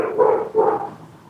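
A dog barks twice in quick succession from behind a closed door, two clear barks a fraction of a second apart, followed by a quiet fade with no speech.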